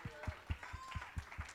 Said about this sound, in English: Oh, somebody ought to clap your hands. Come on, let's give God praise.